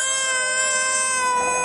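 An infant wails in one sustained, high-pitched cry with strong harmonic overtones, loud and steady for nearly two seconds without a break. No one else speaks.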